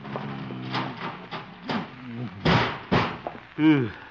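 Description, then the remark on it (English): A heavy object thuds twice in close succession as a filing cabinet is shoved against a door to barricade it, with strained vocal grunting around the bumps and a final groaning voice. “Filing cabinet.”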